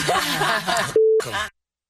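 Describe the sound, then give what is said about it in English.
A single steady censor bleep, a pure mid-pitched tone lasting about a quarter second, cuts into the middle of a stretch of speech, bleeping out part of the word "take" in "take them," with talking on either side of it. “And when you bleep it out, it sounds beautiful. I like it better with the beep.”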